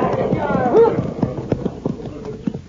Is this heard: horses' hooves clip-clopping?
yes